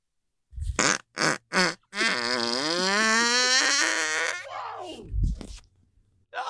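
A recorded fart: three short puffs lead into a long, drawn-out tonal fart that rises in pitch and buzzes for a couple of seconds, then trails off into a lower sputter. No talking.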